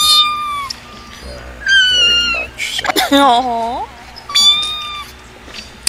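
A pregnant cat meows repeatedly, four drawn-out, wavering cries separated by short pauses, one lower and more warbling than the others.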